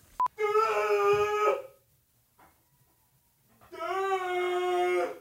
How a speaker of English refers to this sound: Two dumbasses yelling out their window.